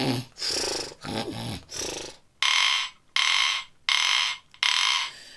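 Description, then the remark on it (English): A voice imitates snoring: a few throaty, rumbling inhales followed by four loud, evenly spaced breathy hisses, clear with no other sounds. “Instead, he snored.”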